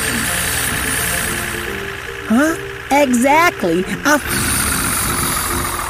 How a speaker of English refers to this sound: The engine roared.